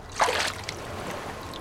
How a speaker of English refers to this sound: Cut to the edge of the lake. All looks dead and goopy and calm. Finally, the surface is disturbed by some ripples. A hat floats to the surface.